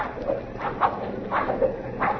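A horse struck by an arrow shot by attacking Indians cries out in short, pained squeals amid a busy, clattering commotion of hooves and movement, fairly loud and repeating several times in quick succession.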